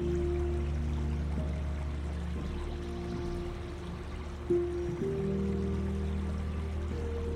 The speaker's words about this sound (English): And as you continue along the gentle river, you just begin to notice a subtle change in these waves and the gentle rhythm of the water now, as the soft ripples start to grow slightly more pronounced, hinting at the approach of the sea ahead.